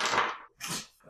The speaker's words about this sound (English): I'm just doing this for fun. It's fun to roll dice every once in a while.